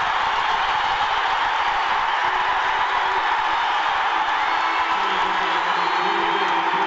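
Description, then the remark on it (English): A large arena crowd at a BYU basketball game roars and cheers after Elijah Bryant drives and scores an and-one, a loud, sustained wash of noise that holds steady for about seven seconds, with no clear voices standing out. “It's as loud as I've heard it all year”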